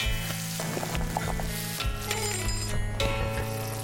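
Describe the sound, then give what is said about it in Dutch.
A pan of cherries and white wine simmers and sizzles steadily on the heat, with a dense, crackling hiss that stays fairly loud throughout and brief clinks of a utensil stirring. No one speaks. “Dus we hebben het pan nog steeds op het vuur staan.”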